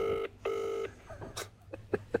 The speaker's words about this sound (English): Why should I answer her phone?